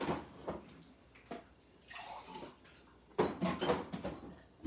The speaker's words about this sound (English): Let me get a glass of water.